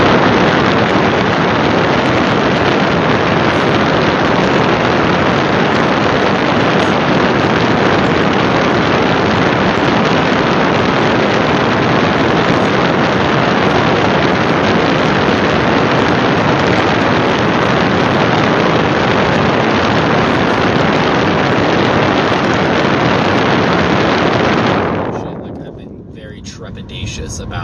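Loud, sustained wind gusts roar and buffet the microphone at the North Rim while walking up to the edge, a dense rushing blast for nearly the entire stretch that suddenly drops away to a quieter hush in the final seconds.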